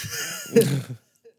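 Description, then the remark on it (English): A drawn-out yawn: a breathy inhale that swells into a brief voiced groan, then trails off into quiet, with no talking. “pardon my yawn.”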